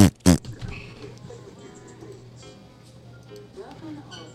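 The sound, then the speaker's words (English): Two quick, loud fart sound effects burst out back to back at the start, remixed-style, followed by a steady low electronic hum with faint, muffled voices underneath. “The farts are going to come double time now.”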